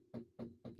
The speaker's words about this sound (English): I got to knock on some wood.